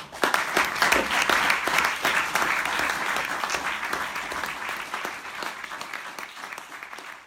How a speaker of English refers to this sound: As you can tell from the claps just there, the lecture theatre was full of people who were all engaged and captivated.